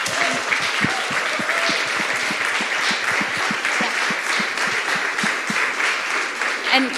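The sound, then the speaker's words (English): A crowd applauds three panelists steadily for several seconds, many hands clapping in a dense, even patter that holds a constant loudness throughout with no voices standing out. “So, first of all, let's give a warm applause to our three panelists”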